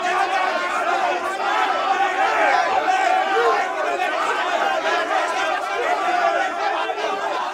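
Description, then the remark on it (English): A large crowd murmuring and grumbling in disapproval at the announcement that the Renault 25 Yuppie ad has won, a dense, steady wash of many overlapping voices that stays loud throughout without any clear individual words. “that doesn't seem to have been a popular choice. Still, never mind, I've turned the crowd mics off and arranged for one or two of the better lubricated ones to be thrown into the moat.”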